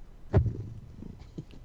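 A cat makes a brief, soft sound, a short low burst trailing into faint rumbling, like quiet purring, with no one talking.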